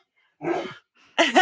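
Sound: dog barking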